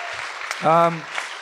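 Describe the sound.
An audience claps steadily throughout for an audience member's good question, a dense crackling patter of many hands, with a brief voiced whoop or cheer rising over it midway.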